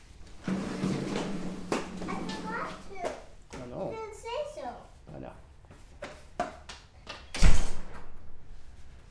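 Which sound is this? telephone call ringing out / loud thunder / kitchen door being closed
kitchen door being closed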